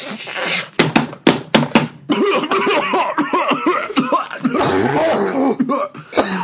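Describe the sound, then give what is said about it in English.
Several people cough and clear their throats in quick, overlapping bursts, fairly loud, with a few sharp hacks at the start followed by a continuous jumble of throaty coughing. “Everyone stop coughing.”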